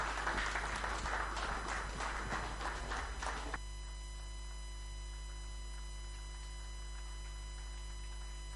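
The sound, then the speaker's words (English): A church audience claps together for Jesus after a prayer, a dense, steady burst of applause for about three and a half seconds, then it cuts off abruptly, leaving only a faint low hum. “Let's give a clap of into Jesus.”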